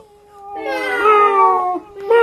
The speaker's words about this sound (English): Next round is... who can make a cat smile? Oh, God. Here we have a litter of kittens. And they come...